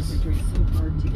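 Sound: car driving in traffic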